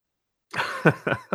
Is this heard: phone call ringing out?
no